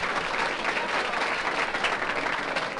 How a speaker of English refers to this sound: Would you be good enough to join in and give these kids a nice big round of applause? Because they're positive thinkers.